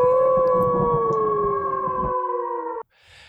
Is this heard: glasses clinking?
no